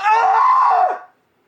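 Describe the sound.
A person's voice imitates the scream of a mountain lion in heat: one loud, sustained, harmonic shriek lasting about a second before it bends downward and cuts off, heard alone.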